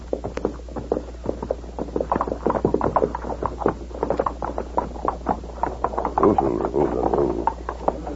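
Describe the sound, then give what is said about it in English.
Several horses trot past, their hooves clattering in a dense, overlapping patter that swells slightly toward the end, with no voices. “Sounds like several horses.”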